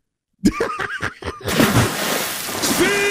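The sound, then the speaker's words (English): A short burst of snickering laughter gives way to a loud, sustained watery splash and sloshing noise as Seabold is put in the water. “Of course you put Seabold in the water.”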